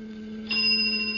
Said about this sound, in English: Now, what do you do? A moment until the bell sound.